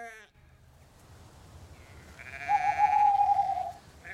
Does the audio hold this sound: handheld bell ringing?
no